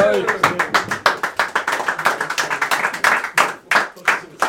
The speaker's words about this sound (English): Right, lads, thank you. Give him a round of applause, lads.